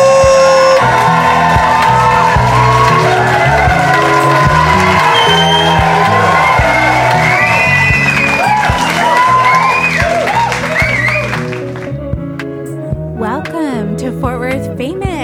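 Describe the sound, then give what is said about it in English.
A large, standing-room-only live audience cheers, whoops and applauds loudly and continuously, with shouts rising over dense clapping before the noise thins out toward the end. “And y'all got a really big crowd here today.”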